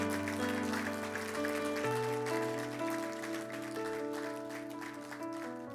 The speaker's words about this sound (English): Here comes one. Here comes two. Here comes three. Come on, give them a round of applause as they come today.